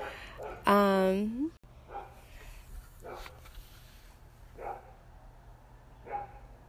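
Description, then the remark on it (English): Dogs barking: one loud, drawn-out yelping bark, then several fainter, brief barks spaced a second or so apart in the background. “The dogs are having fun wherever they are.”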